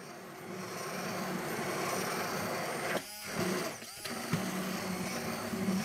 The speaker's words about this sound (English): the fact that you're using an immersion blender that fits perfectly and kind of encapsulates those ingredients first is that the oil is able to slowly be incorporated to the other ingredients.